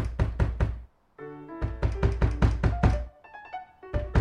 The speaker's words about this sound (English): Then the singer comes back, starts pounding on the door.